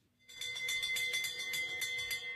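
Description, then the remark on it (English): A loud electric bell rings continuously with a rapid, rattling clang. It starts abruptly after a brief pause and keeps ringing steadily to the end, with no voices. “No, you did hear the bell.”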